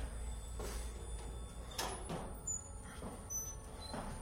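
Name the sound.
door opening and closing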